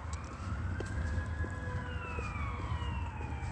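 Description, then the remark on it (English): An Upland Fire Department fire engine's siren wails loudly and steadily as it goes by, its pitch bending lower as it passes, over a constant low rumble of traffic. No one speaks. “Under what is the creation of activity by the state using sirens. The Upland Fire Department, that's POC.”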